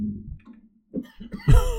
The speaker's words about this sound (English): That has been a COVID cough break. I got a little cough. I tested negative twice, guys. Stop worrying.